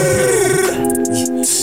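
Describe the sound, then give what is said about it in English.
A phone ringtone chimes in a steady run of bright, layered electronic tones, loud and tuneful, sliding into a held note with no one speaking over it. “Whose phone was that?”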